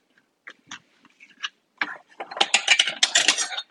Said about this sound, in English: So I'm just cutting across. I've got the chicken thigh laying perpendicular to me on the cutting board. So I've just cut it across into pieces.